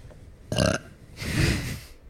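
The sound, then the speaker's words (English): Two burps in quick succession during a belching contest: a short, sharp belch followed by a longer, rumbling, drawn-out one, with no talking over them. “Belching contest.”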